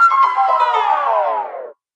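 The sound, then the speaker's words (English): An old-fashioned 1800s wall telephone in an antique room rings in one steady, bright burst lasting under two seconds, its tone sagging slightly in pitch before cutting off abruptly. No one speaks over it. “We have an old timey phone call coming in.”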